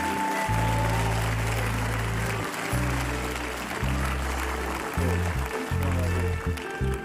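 A church crowd claps steadily and loudly throughout as a father comes out to be honored, a dense wash of applause over deep, sustained bass notes from music playing underneath.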